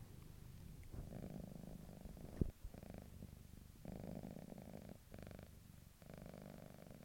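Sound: domestic cat purring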